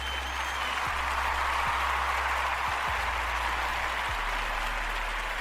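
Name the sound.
played clapping sound effect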